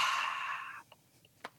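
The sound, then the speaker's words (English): An airy breath, an inhale with an extended exhale, a steady hiss of air lasting under a second before it cuts off, followed by near silence with a couple of faint clicks. “What if I could just inhale and extend my exhale?”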